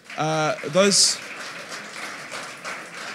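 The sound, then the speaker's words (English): A couple of quick shouted cheers, then a church audience breaks into steady, moderate applause for its community group leaders that keeps going as a dense wash of clapping. “And can we just give an applause to the community group leaders?”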